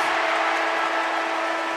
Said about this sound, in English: Quickly got rid of it to Jai Clark. He kicks the Cats beyond halfway. Myers will take the mark as the final siren rings out.